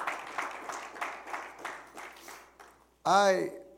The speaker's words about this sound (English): Clap your hands unto the Lord if you don't mind.